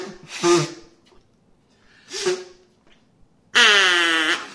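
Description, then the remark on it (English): Two short, breathy nose blows with a pause between, followed by a louder, sustained reedy honk resembling a mallard duck's call, with no talking. “Let's blow your nose versus the mallard's duck thing.”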